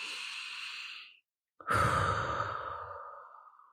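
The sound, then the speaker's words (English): A long, airy cleansing breath at the start of a meditation session: an inhale, a brief pause, then a full, audible exhale released as a deep sigh that slowly fades out. “So when I start a session, I generally start with us taking a cleansing breath.”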